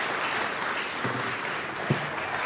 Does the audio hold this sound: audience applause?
yes